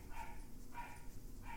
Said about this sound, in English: It was honestly just the dogs barking in the background. I think that's the thing that frustrated me most about the game.